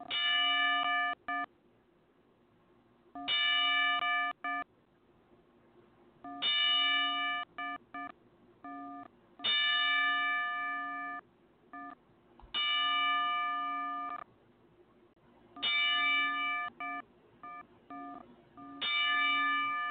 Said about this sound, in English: Well, guys, if I may have your attention for a couple seconds, let's please just have a couple seconds of silence as we give him a 10-bell salute and send his prayers to this family.